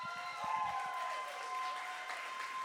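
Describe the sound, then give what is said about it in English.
A crowd claps and cheers steadily and loudly for the whole stretch as the speaker's wife is welcomed onto the stage, with a few sustained musical tones humming beneath the applause. “Hey, guys, keep cheering me on because she's mad at me right now.”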